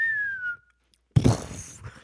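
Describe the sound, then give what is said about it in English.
A whistled tone glides steadily downward in pitch for about half a second, mimicking a plane as it starts to go down, then a short silence before a loud, rough burst of noise, a fart. “That's the sound a plane makes. When it starts to go down.”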